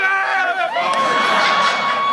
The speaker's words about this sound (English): And it seems like the bars have cleared out. People are coming out to take pictures, to scream and yell, and to cheer for the elephants.